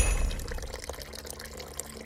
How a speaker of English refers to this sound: Back at my lodge, I pour myself a cup of hot cocoa and overload it with marshmallows.